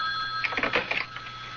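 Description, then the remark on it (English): A telephone rings in a short, rapid burst of bell-like trills, moderately loud, over a faint steady tone. No one speaks. “We should be hearing from him any minute. There. Answer it.”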